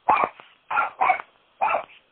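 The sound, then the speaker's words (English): A dog barks four times in quick, uneven succession, sharp, with brief pauses between the barks and no voices around them. “My dog is not a fan of that.”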